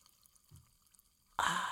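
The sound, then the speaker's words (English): Store-brand club soda is poured into a glass to top off a cocktail: a sudden, steady rush of bright hissing fizz after a quiet stretch with a faint soft bump. No voices. “And anyway, you top it off with club soda. And I'm about to do that here with my classy store brand club soda.”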